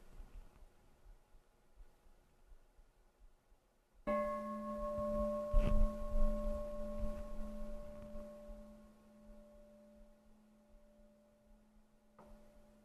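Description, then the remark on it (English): A single bell is struck and rings out with a deep, steady hum and bright overtones, slowly fading over about eight seconds. No one speaks. “So just like the fading sound of the bell, just allowing the words and the meanings to recede into the background.”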